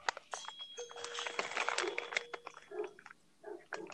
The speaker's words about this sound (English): Well, sorry if I'm crunching in y'all ear. I'm eating some holiday cookies from the Dollar Tree. Holiday cookies? It's delicious.